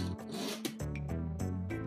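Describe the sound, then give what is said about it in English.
The wheels of a small plastic Lego toy car with three sets of wheels roll across a surface with a continuous rasping, buzzy whir that shifts in pitch a few times, steady and fairly loud, with no voices. “It's a Lego car, and it has 3 sets of wheels. This is the noise.”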